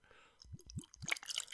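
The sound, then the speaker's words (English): Rum pours from a bottle into a glass, three low glugs giving way to a bright, trickling splash, quiet with no talking. “Right, so I'm going to pour this out.”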